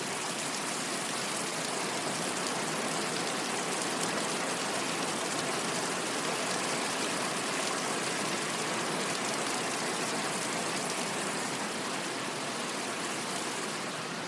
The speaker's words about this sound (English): And the rain is pounding down. Doesn't it sound soothing? It's kind of relaxing, isn't it? Beautiful summer rain. Well, spring rain, I should say. Listen to that. I'm just going to shut up for 30 seconds so you can hear it.